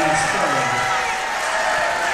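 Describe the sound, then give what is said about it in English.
A large basketball crowd roars steadily after a foul call, a dense wash of cheering and shouting voices that stays loud and sustained throughout, with scattered whoops rising out of the din. “Crowd comes alive on that one.”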